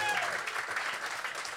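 A crowd claps in a dense, steady burst of applause, the many overlapping hand claps blending into a continuous bright patter that holds at an even loudness throughout.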